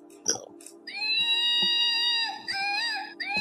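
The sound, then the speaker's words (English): A squeezed monkey dog toy lets out a long, loud, crying wail with a steady high pitch, then a second warbling, wavering cry right after it. “Oh, this makes noise too.”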